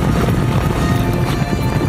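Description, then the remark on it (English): Cowboys on horseback gathering cattle outdoors, hooves thudding in a steady, busy rhythm, with gusty wind noise and a rumbling low-end bed throughout; no one speaks. “Dad and the cowboys are gathering some cattle.”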